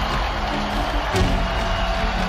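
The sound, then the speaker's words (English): A hockey arena crowd roars in a loud, sustained wash of cheering as the Danbury Trashers tie the score, a dense and steady wall of noise that holds at full strength for the whole moment. “And now this place has erupted once again.”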